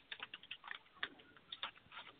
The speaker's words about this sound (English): It's paper. It's paper. Okay? You all right? Okay. I'm throwing away paper. Am I allowed?